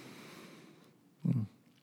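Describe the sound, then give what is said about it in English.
A single heavy, gusty breath blasts into the microphone, a short, loud, low rush of air that follows a stretch of soft, steady low hiss. “You hear me breathing.”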